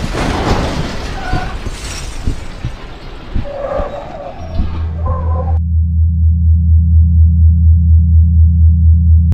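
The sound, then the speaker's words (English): A busy, noisy scene with scattered clatter and chirps suddenly cuts out, replaced by a loud, low pulsing hum that throbs steadily and alone until the end. “So you can see there's this sort of just complete numbing out, kind of represented by that pulsing hum, the experience of a protector that comes in to just deaden everything down.”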